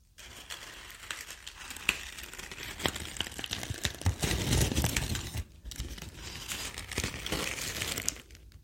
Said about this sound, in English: Gloves and crinkling paper.